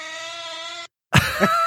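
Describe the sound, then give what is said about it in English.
A cat gives a long, steady, whiny yowl, falls silent for a moment, then lets out a louder, rougher cry that wavers in pitch. No one speaks. “Listen to this cat. It's a little crabby sometimes.”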